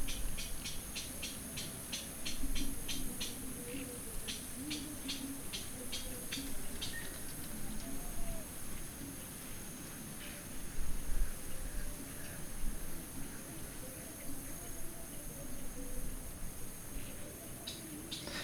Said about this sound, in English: I've always been enchanted by the musicality of sounds that gradually slow down. Like this bird song at sunset in Cuba.